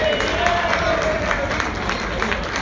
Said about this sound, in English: All right, Atlanta, you know what day today is? … birthday. Can we get a round of applause for the …?